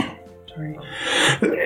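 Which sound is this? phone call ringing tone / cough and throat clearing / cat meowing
cough and throat clearing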